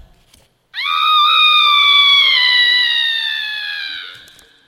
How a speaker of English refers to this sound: Please go to sleep, baby, the mother said. I will not, shouted the baby, always hungry, always pooping. And the baby began to scream.